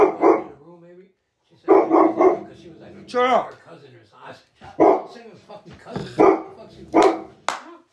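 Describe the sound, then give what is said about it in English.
A male dog barks loudly in repeated short bursts, mixed with a few high whiny yelps, while people's voices can be heard around it. “He barks like a motherfucker now, huh?”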